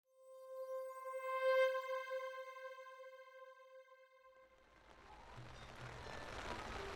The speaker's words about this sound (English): The rain wasn't something I wanted to get caught in these days, just a little too acidic for my taste.